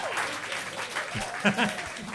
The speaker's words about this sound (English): And how about another round of applause for the panel? Amazing people.